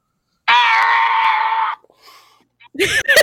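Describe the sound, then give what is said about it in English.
A voice imitates the crowd screaming at a Star Wars show: one loud, sustained, shrill scream lasting about a second, a brief quieter murmur, then another sharp burst of screaming at the end. “That's pretty much, there were so many screams where we were standing”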